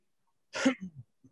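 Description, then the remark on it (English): One sudden sneeze: a sharp, breathy burst followed by a couple of short trailing snuffles, then quiet. No one speaks. “Bless you.”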